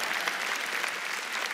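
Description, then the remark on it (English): An audience at a church sermon claps steadily to celebrate Jesus as King, a dense, even wash of many hands with no gaps or talking, holding at a constant moderate loudness throughout. “We got 1 person clapping.”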